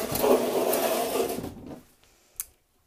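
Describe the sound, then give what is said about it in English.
A heavy wooden cabinet is pulled across the floor for under two seconds, a loud grinding drag that trails off, followed by a single short knock. “Okay, so I've got to get it. I'm going to pull it this way.”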